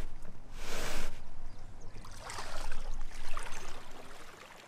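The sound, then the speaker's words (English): A large canoe is dragged into the water of the Wollastook river by descendants of its original boat builders, with a sharp scraping rush followed by a longer, rougher surge of splashing and grinding against a steady outdoor background. No one speaks. “The canoe is so large it has to be dragged to the water.”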